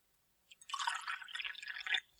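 A short pour of whiskey into a glass, a steady gurgling splash lasting just over a second before stopping cleanly, with no voices.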